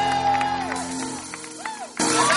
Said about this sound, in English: We don't have much time, so put your hands together, scream, and welcome our Father, Bishop Dag Hewitt-Mills.